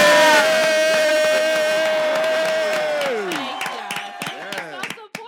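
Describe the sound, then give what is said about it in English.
A small crowd cheers and whoops loudly to congratulate someone on passing the state board exam, with a sustained high-pitched holler. It then breaks into scattered, uneven hand claps that carry on through the final seconds. “Can we do a round of applause?”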